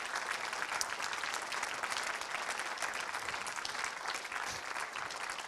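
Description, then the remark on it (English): A large church audience, standing, claps steadily for several seconds as a thank-you to Jesus, a dense, even wash of applause with no break in intensity and no clear voices rising above it. “Shall we just stand up one more time and just give Jesus a great big thank you and a clap and a cheer?”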